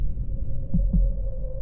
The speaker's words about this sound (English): But for many minutes, the heart beat on with a muffled sound. This, however, did not vex me. It would not be heard through the wall.